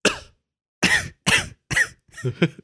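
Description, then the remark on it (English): A series of five harsh coughs, a single one followed by a quick run of four in a row, with no talking. “Hey, you want the rest of this corn? I coughed on it.”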